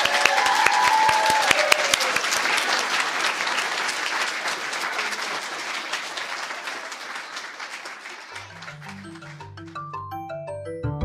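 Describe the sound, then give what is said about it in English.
An audience at a Lighthouse Writers Workshop event breaks into sustained applause for the young writers, a dense wash of clapping that slowly softens over about eight seconds before a simple melodic tune fades in beneath the last claps. “Maybe one more round of applause for all of them.”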